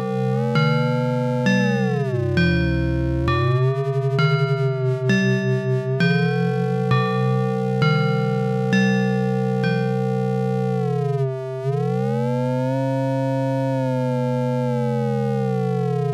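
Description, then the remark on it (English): A loud, sustained synthesizer drone with metallic, inharmonic ring-modulated overtones, its pitch bending and swooping slowly, producing clanging difference tones with a bell-like, siren-ish quality; no voices. “You know, it doesn't really sound like a bell when you're just kind of hearing it drone, but you can hear that kind of those difference tones you get from ring modulation are very similar to the inharmonic tones you get from bells”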